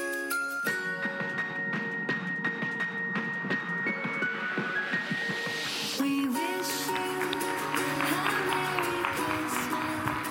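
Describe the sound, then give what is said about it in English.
An audience at a Christmas service claps steadily for children for several seconds while bright, sustained instrumental music plays, the dense patter of many hands blending with the tones and continuing at a fairly loud, even level. “You can clap louder for kids.”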